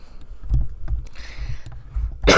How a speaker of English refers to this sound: excuse me, got a little bit of smoker's cough right now.